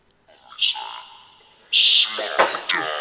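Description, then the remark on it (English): A loud sneeze: a drawn-in, breathy build-up followed by a sharp, explosive burst, with softer voiced sounds just before it. “I sneezed, sorry, I ruined it.”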